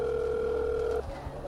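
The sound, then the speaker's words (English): A steady electronic telephone tone hums for about a second, then cuts off abruptly, leaving a faint low background murmur. “Does Azhaam at any point decide that enough tones is enough, or does Azhaam wait?”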